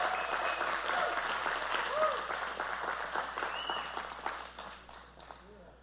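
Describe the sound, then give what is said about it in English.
An audience claps steadily for the Lord after worship, a dense wash of applause with scattered voices and cheers mixed in, slowly thinning and fading toward the end. “Let's give the Lord one more hand clap.”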